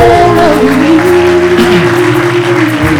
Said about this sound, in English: Come on, let's clap our hands and give the Lord.